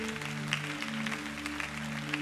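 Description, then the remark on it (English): A crowd claps their hands steadily to say amen to God, a dense, even patter of many hands over a sustained low organ-like chord. No one speaks. “Come on, if you believe that, let's clap our hands and say a good amen.”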